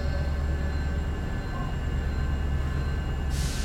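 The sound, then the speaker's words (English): A train rumbles steadily on the rails, a heavy, continuous low drone with faint high whining tones above it, loud, ending in a brief burst of hiss. “Yeah, they parked a train there.”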